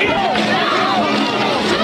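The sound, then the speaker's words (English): An angry protest crowd shouting at night in Minneapolis over the death of George Floyd, a black man, during a struggle with police: a dense, loud wall of many overlapping voices that holds steady for about two seconds, with no single voice or clear words standing out. “A big protest over the death of a black man during a struggle with police Monday night.”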